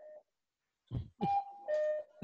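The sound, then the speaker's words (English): A cuckoo clock chimes with repeated two-note calls, each backed by a soft low puff, following a brief faint tone. Clear, with no voices. “You guys are going to hear my cuckoo clock.”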